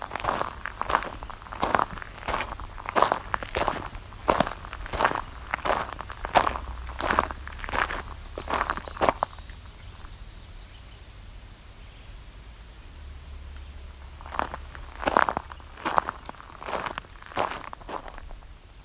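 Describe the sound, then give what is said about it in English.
A woodpecker pecks on wood in a steady series of sharp taps, about two per second. The taps stop for several seconds, then a shorter burst resumes over a faint outdoor hiss. “Woodpecker in there, pecking away.”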